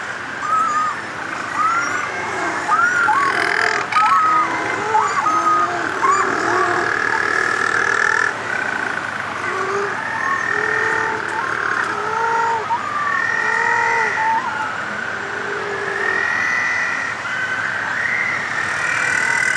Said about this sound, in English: Andrew Monty recorded these penguins. We used to call them fairy penguins, but they're little penguins now.